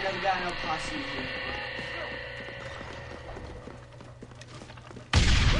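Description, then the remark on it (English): A video game grenade explosion bursts in suddenly and loudly near the end, following several seconds of steady humming tones and scattered clicking game sounds. “That was a nade. I didn't know that there were nades in here.”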